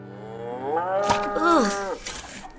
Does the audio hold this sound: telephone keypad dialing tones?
no